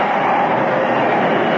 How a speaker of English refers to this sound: Brakes. Somebody pull the air brakes.